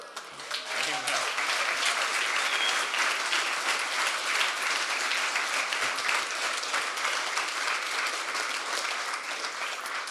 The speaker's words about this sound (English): Man, so much clapping today.